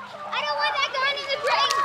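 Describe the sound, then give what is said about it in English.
High-pitched children's voices shout and chatter over one another as kids play in the splash pad at Town Square Park. The lively, overlapping calls fill the short stretch. “It's expected to triple from 160,000 to 500,000 by the time these kids playing in the splash pad at Town Square Park have grandkids of their own.”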